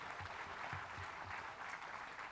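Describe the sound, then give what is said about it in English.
Steady audience applause for people campaigning against native forest logging, a dense wash of many hands clapping at an even loudness throughout, with no voices breaking through. “So a huge, huge round of applause for all of you here and out there across the country who have been doing this for years.”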